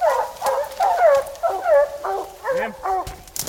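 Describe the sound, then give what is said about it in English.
Five hunting hounds stand around a pine tree barking up at something, barking and baying in a rapid, overlapping chorus, a steady run of loud, drawn-out howling barks, with no one talking. “We came to a thick cluster of trees where all five dogs stood around a pine tree, barking up at something.”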